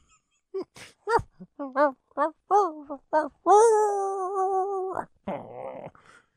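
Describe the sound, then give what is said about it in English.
A woman's voice imitates a puppy, letting out a quick run of about eight high, short yips, then a drawn-out whining yelp and a rough breathy sound, fairly loud. “She's yipping like a puppy.”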